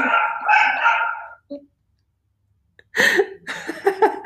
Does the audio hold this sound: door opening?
no